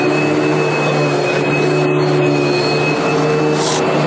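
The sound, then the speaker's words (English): A vacuum cleaner runs as someone vacuums a studio, a loud, steady roar with a constant whine layered on top, unchanging for the whole few seconds with no voices. “Lou's vacuuming up the studio real quick.”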